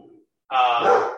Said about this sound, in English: You hear the dog? Oh, sorry.